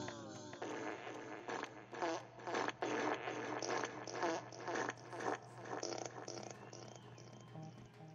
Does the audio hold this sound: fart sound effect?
yes